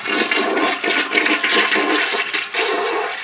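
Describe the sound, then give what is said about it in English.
A toilet built into a glass table flushes with a steady, loud rush of water that churns and gurgles throughout, with no voices over it. “You got a toilet built right in that glass table.”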